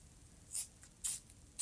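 Prismacolor colored pencils scribbling on paper in three short, scratchy bursts about half a second apart, fairly quiet, with no talking.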